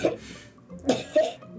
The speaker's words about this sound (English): She coughs a ton of brown stuff into her hand.